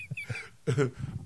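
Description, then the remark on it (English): A voice imitates coughing: a few low, short grunting pulses, then one loud, rough, hacking burst, followed by more quick, brief guttural sputters. “And then just coughing, all the feathers fly out.”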